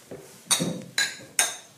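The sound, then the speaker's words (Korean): Three bright glass clinks, evenly spaced, each leaving a short high ringing tail, like glasses touched together in a toast with Goose Island Honker's Ale beer, with no talking. “자, 그럼 짠 하겠습니다. 짠.”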